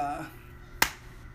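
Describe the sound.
A single sharp, loud hand clap made right into a microphone cracks out suddenly and decays quickly, right after the tail end of a voice trailing off. Quiet background follows.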